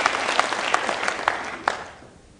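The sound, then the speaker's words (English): An audience claps for a couple of seconds, a dense patter of many hands with a few sharper claps standing out, then the applause thins and fades away. “Thank you for a few of you who clapped. Should have been everybody. Try that again.”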